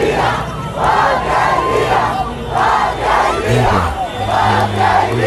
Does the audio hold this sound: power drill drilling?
no